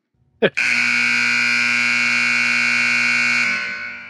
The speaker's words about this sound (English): I'm turning off the buzzer.